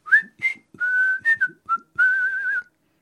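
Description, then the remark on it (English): Someone whistles a brief, carefree tune, with a few quick rising notes followed by longer held tones, clear and unaccompanied, with no talking. “Jasper Tudor left the Breton town of Vannes, apparently on his way to meet with the Duke Francis, presumably whistling casually.”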